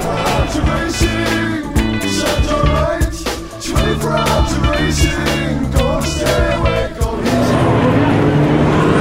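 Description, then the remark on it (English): Loud, continuous engine roar from race cars at Le Mans coming round on the final warm-up lap as the grandstand crowd stands and applauds, with layered revving tones and swells as they pass by, dense and sustained throughout with a brief dip midway. “Everybody in the tribune stood up and started applauding as the cars came round on the final of the warm-up laps.”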